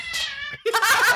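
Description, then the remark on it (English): A person imitates a cat with two drawn-out, nasal meows in quick succession, the second rising sharply and sounding strained, fairly loud with no other talk. “I told you stop meowing.”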